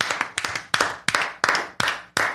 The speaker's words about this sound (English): I'm going to clap it out.